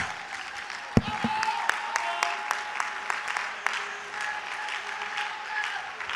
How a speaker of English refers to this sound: Somebody ought to give God a great praise. Somebody ought to give him a great hand clap. Somebody ought to give him a great shout.